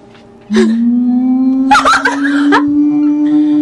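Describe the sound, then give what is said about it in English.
A person imitates a brontosaurus call: a long, steady, low droning tone held for several seconds, turning rough and growly midway, loud. “That is apparently what a brontosaurus sounds like.”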